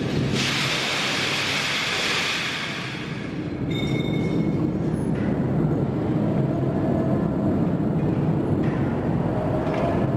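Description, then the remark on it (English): Heavy carts of scrap metal, such as shredded automobiles and railroad wheels, rumble and grind along tracks at a steel plant in Saukville, Wisconsin, near Milwaukee, heading to the electric arc furnace, with a loud, steady roar of industrial noise. Faint high tones of blaring alarms sound partway through. “Alarms blare as it's carted along tracks to the plant's electric arc furnace.”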